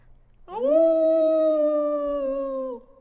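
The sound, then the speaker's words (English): A wolf far in the distance lets out one long, sustained howl that swoops upward at the start, holds a steady mournful pitch for about two seconds, then drops away into quiet. “You're not really sure how far, but a wolf's howl can be heard over great distances, so you could be very far away.”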